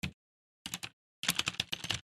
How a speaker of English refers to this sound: I'm obsessed with clicky clack keyboards, and my wife is wonderful. And with me doing my my new academic career as like a go get 'em tiger, she got me this clicky clack keyboard. So check this out. I want you to listen to this.